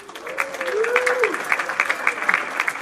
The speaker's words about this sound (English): Contest, whoever gets the loudest applause.